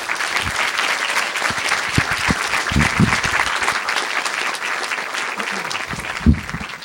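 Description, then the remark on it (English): A crowd claps steadily for several seconds, a dense, even patter of many hands at a consistent loudness with a few stray sharper claps near the end. “Now, before I pass it along to the moderators, let's give them all a big round of applause.”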